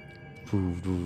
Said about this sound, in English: Phone still vibrating in your pocket.